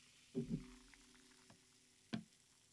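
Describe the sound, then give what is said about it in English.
Cran cherry juice glugs briefly into a glass of drink in two quick bursts, followed by a faint tick and then a sharp clink near the end, all fairly quiet with no talking. “And now I'm going to add a bit of cran cherry juice.”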